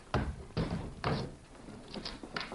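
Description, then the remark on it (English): A heavy jail cell block door clanks open on command, with several loud metallic bangs and rattles spaced unevenly over a couple of seconds, and no one speaking. “open the cell block door.”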